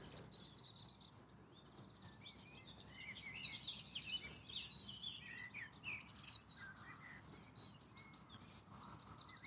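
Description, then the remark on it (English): Birds chirp and twitter continuously outdoors on a sunny day, several overlapping high, rapid calls forming a busy chorus, with a soft low background hum and no one speaking. “Birds are in full effect.”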